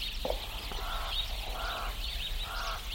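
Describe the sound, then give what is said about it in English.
Several birds call at once in a steady dawn chorus in the small rural town of Newitville, in the Succulent Karoo of southwestern South Africa, in dry, dusty conditions, with repeated honking, goose-like calls rising over a continuous bed of higher chirps and a low constant rumble underneath. “Birds greet the day in the small rural town of Newitville.”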